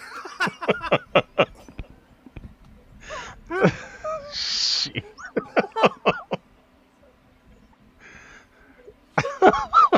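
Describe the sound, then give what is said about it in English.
Heavy, wheezy breathing into the microphone, several loud rasping inhales and exhales in uneven bursts, mixed with short choppy voiced sounds like stifled laughter. “breathing in my ear like that, I can't. No shit, …. What the fuck? Dude, it's sleep apnea ASMR.”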